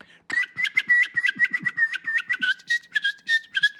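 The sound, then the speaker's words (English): A person whistles a rapid, chirpy series of birdlike notes, steady pitch with quick warbling trills and short breaks, fairly loud with no talking. “I managed to learn to whistle, so I can actually tell you how I whistle now.”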